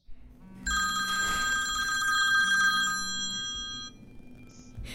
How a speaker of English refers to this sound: Have you ever waited for a phone call and then it happens?